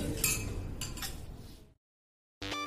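Glasses clink together a few times in a quick toast over a loud, dense background, followed by a brief silence before a busy musical sound bursts back in.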